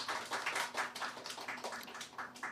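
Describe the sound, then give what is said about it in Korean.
Steady, long crowd applause from a sizable audience at a live concert before the encore, a dense, even patter of many hands clapping together with no voices standing out. “염려를 담아서 박수를 길게 치신 것 같은데”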